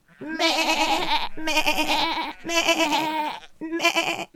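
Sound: imitated sheep bleating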